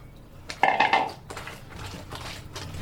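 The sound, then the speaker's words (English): Hands scrub laundry being hand-washed in water in Jalisco, with repeated rough, swishing strokes, preceded by a brief ringing clank like a metal basin being knocked. No one speaks. “And I just scrub.”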